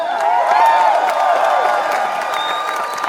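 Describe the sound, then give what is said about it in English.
A large crowd at a Texas Democratic Party voting-rights rally cheers and claps enthusiastically, a dense wash of applause with whoops and shouted voices rising over it, loud and sustained throughout. “You could say it's an enthusiastic crowd.”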